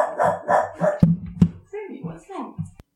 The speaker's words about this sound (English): As your dog has an opinion about this too, obviously. Yeah, my dog is for the first time really sitting on the couch and barking. This does not happen often, so we have to put in a quick break.